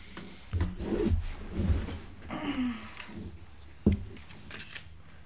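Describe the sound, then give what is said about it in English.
Rustling and shuffling of paper being handled to play a game of celebrity heads, with soft scrapes and rubs over several seconds and one sharp knock partway through. “Celebrity heads. Where's the paper? There. Okay.”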